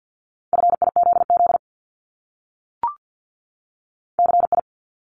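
Morse code at 50 words per minute, spelling multi-letter phonemes, in a steady mid-pitched tone: a quick run of dots and dashes, a pause broken by one brief click, then a short burst of four rapid beeps. No voices.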